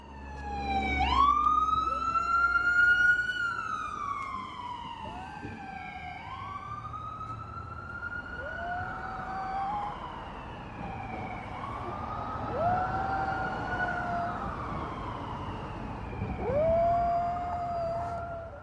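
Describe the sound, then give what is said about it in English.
A wailing siren rises and falls while a small Havanese dog howls along with it in a series of long, arching cries that swell and fade over a low rumble. No one speaks. “One of the sound-making objects on the tape is my dog, and the other, well, it's easily recognizable.”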